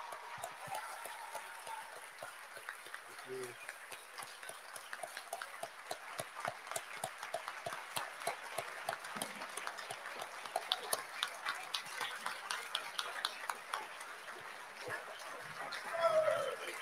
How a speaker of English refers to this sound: Thank you. Can we keep that applause going